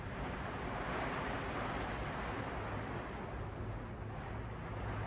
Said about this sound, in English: It's raining. It's pouring.